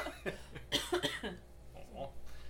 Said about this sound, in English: No, it's just trying to not cough.